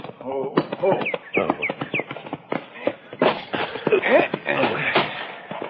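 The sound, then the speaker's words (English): Horse hooves clip-clop in a quick, uneven rhythm by a corral, with people talking over the hoofbeats. “Isn't that him there? Down by the corral there, isn't it? Oh, yeah, yeah. He's got a new horse.”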